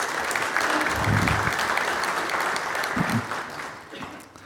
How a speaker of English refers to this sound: Thank you very much. Don't they deserve a round of applause?